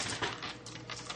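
Several players roll dice, a quick run of light plastic clicks and clatters tumbling together for about a second, moderately loud and crisp, with no voices.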